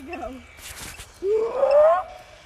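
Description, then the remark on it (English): A person's voice imitates a Bigfoot call: after a brief warbling sound and a breathy rush, a loud, drawn-out howl rises steadily in pitch for nearly a second before cutting off. “Ready, should I do another Bigfoot call?”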